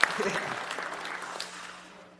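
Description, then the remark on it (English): A church audience applauds itself for its generosity over the summer, clapping in a dense, steady patter of many hands. It is loud at first and gradually thins and fades over about two seconds, with a faint murmur of voices underneath. “Yeah, give yourselves a hand.”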